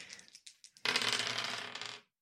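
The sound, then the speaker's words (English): Three dice tumble onto a hard tabletop for a stealth check: a few quick clicks, then a sustained rattle and clatter for over a second before stopping. No voices are heard. “That'll be a stealth check. Mm-hmm. 3 dice.”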